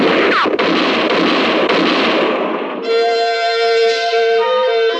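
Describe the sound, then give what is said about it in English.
Heavy gunfire erupts in a moonlit clearing at night, dense overlapping shots blurring into a loud roar for about three seconds before giving way to a sustained tonal ringing. “For about 5 seconds, the moonlit clearing thundered to the sound of gunfire.”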